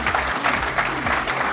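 A crowd claps steadily in a dense, sustained wash of applause, loud and close throughout with no voices breaking through.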